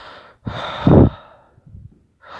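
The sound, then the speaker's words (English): Slow, deep breathing by a person sitting in very cold water: one long, heavy breath, then a softer, shorter breath, and another beginning after a pause. No talking. “All I can think of, and I'm not even thinking of it, but my body's just reacting, and all I'm doing is just slowly breathing, and all I'm thinking about is my breath.”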